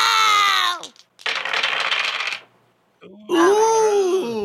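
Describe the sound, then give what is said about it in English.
Three dice are rolled in a short burst of rattling and tumbling across a surface, lasting about a second, as a combo move in a game. Voices exclaim just before and right after the roll. “So that's three dice.”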